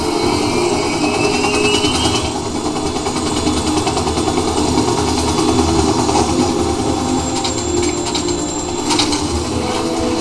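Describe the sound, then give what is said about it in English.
A helicopter approaching a boat drones steadily and loudly throughout, its engine and rotor noise filling the scene as a dense, continuous roar with no voices. “Looking out the front window and see a helicopter approaching.”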